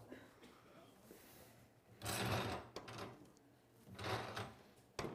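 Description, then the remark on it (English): A door swings with two scraping, rustling bursts of movement a couple of seconds apart, each ending in a soft knock, set against quiet. “Whoa, door.”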